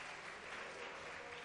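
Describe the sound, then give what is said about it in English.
A church audience claps their hands together in praise, a dense, steady wash of many overlapping claps that holds at an even loudness throughout, with no clear individual beats. “Somebody clap your hands and shout hallelujah.”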